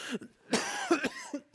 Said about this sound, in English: Sorry, I got a cough.